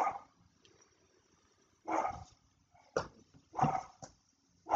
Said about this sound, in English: No, they're barking at the garbage guys. Oh, shoot. Yeah. They bark at the fucking wind, so don't worry. If they're barking, it's just the natural course of their life. It's who your dogs are. They love to bark. They fucking love it.